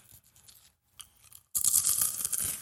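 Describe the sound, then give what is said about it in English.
Crunching and chewing on Trader Joe's Cinnamon Apple Snack Sticks, a sweet crunchy corn snack, starting with a few quieter crackly bites, then a sudden loud burst of dense, crisp crunching that continues steadily to the end. “Episode is brought to you by Trader Joe's Cinnamon Apple Snack Sticks, a sweet and crunchy corn snack flavored with apple cinnamon and sugar.”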